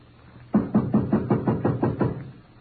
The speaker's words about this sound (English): Shall we knock or force our way in? I will knock.